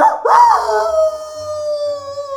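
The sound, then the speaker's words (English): A small mongrel dog howls once, loud: a quick yelping rise that settles into a long, steady, thin wail lasting a couple of seconds, with no talking. “A nasty, squalling little mongrel.”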